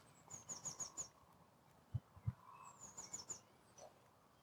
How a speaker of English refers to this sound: Definitely nearly bedtime for the animals, well, for the daytime ones, because the birds have gone a lot quieter.